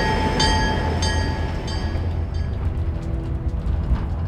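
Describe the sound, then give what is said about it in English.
A freight train rolls steadily along the rails with a heavy, continuous rumble, periodic clacks from the wheels and a thin metallic squeal ringing over the first couple of seconds. “So we were on this train for a while, and we didn't necessarily know where it was taking us.”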